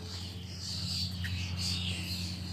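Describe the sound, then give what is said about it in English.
Birds sing continuously, a dense wash of high chirping and trilling over a steady low mechanical hum; no one speaks. “Those birds. Proper going for it, don't they?”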